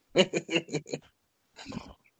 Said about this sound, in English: So I think I hear one of your cats calling. Yeah, yep. And Parmesan just meowed.